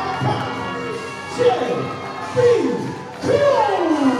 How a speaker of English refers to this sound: And the crowd loves J.B. Cole. Listen to that. Very hotly here in AML. He's got the NASCAR flag. J.B. Cole is in the building.